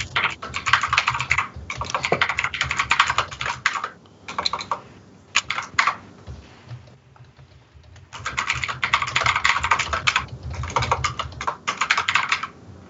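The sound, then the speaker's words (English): Rapid clacking of a mechanical keyboard on a new computer, typed in two dense bursts with a brief lull of scattered keystrokes between them, fairly loud with no voices. “Who's is that keyboard?”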